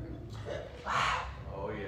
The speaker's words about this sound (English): But the rooster is crowing. Yes. Can't you hear the rooster?